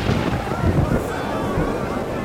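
A thunder sound effect: a deep, continuous rumble rolls for about two seconds at a steady, fairly loud level, heavy low booming with a rough, windy texture on top.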